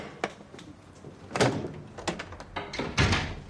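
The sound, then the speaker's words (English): A few sharp knocks on a front door, followed by the thuds and scrapes of the front door being opened, fairly quiet, with no voices. “she knocks on the door and you see a side shot of, you know, the door opening”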